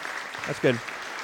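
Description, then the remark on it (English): Steady audience applause for a student taking a bow, a dense wash of clapping throughout, with a brief voice rising above it partway through. “And I want you to take a bow while we applaud you.”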